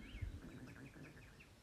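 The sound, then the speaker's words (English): A faint, rapid series of small bird chirps repeats steadily over a soft low rumble, with no one talking. “so that's it for me and the birds and my dog and my growling stomach.”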